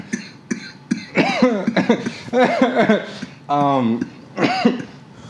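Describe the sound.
A run of harsh coughing: a few short dry coughs at first, then longer, raspy voiced hacking with strained, throaty breaths between bursts.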